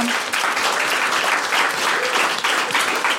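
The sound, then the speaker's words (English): A crowd applauds steadily, with dense, overlapping claps forming a loud, even wash of sound that holds for the whole few seconds without any voices. “They also, round of applause for those guys.”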